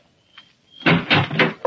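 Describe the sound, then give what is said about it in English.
After a brief quiet moment, a door is opened, with a series of loud clunks and rattles from the latch and frame. “get decent and open the door.”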